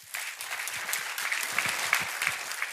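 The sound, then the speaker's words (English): An audience, urged by a speaker to start a clap and make it faster and louder, claps in dense, rapid applause that grows slightly louder and fuller over a few seconds, with no voices over it. “I actually just wanted you to applaud for me just in case at the end you didn't think any of this was valuable.”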